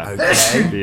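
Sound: sneeze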